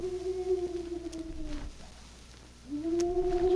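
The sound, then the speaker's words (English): A man's voice mimics a hoot owl from just outside a jailhouse cell in Canyon City, with two long, drawn-out hoots, the first sagging at its end, then a short pause before the second swells in, fairly loud with no talking. “You mean it's somebody imitating the cry of a hoot owl?”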